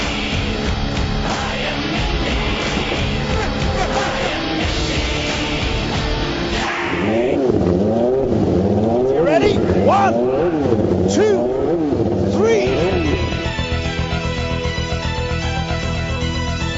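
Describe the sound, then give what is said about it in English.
IndyCar race car engines roar and whine as several cars accelerate past during green-flag racing, their pitch sweeping up and down through gear changes, loud and continuous over a steady background din. “We're going back to Green Flag Racing.”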